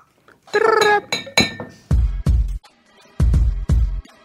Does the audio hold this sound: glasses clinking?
yes